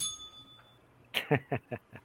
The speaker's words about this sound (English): I got the bell.